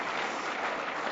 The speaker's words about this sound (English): That's right. My Minister of Transportation is applauding there. Way to go, Glenn.